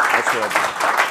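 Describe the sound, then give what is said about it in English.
A crowd applauds with steady, dense clapping that fills the whole second without a break, while a man's voice speaks over it. “So I'm very surprised by the applause, I have to tell you.”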